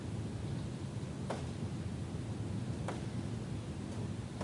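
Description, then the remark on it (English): Steady rain falling, a dense, even hiss of drops with a low rumbling undertone, broken by a few sharp ticks of individual drops. No one speaks. “For example, when you are listening like this, you hear the rain.”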